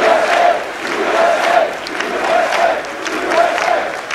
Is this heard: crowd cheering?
yes